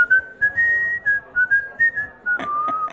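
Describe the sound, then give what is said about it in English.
A person whistles a short, wavering tune of clear sustained tones, fairly loud, with a few breathy puffs near the end and no talking. “was bedeutet pfeifen? To whistle.”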